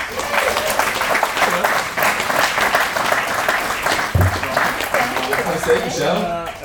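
An audience breaks into a sustained round of applause, dense and steady clapping filling the whole stretch, loud and continuous before tapering slightly at the end.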